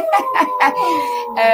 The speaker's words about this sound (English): Oh, my word, the dogs are now really going.